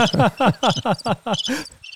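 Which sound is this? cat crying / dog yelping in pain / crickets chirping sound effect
crickets chirping sound effect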